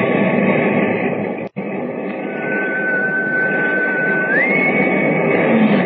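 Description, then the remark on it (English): A loud, constant rumbling roar with a brief dropout early on, then a steady train whistle tone that holds for a couple of seconds before stepping up to a higher pitch. “I didn't want to ask you before I heard the whistle again.”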